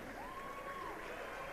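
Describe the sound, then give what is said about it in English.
A basketball crowd reacts with a steady wash of cheering and applause as Ethan Menzies checks in for the Mavericks, holding at an even level throughout, and a thin whistle-like tone glides briefly over the noise. “Every time he comes on the floor, you always hear the crowd reaction. Very positive.”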